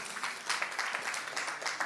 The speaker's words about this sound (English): Thanks for clapping at the time I yelled at you. That's crazy. You're like, yeah, yell some more.